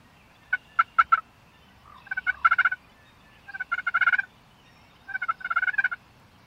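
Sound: wild turkey gobbling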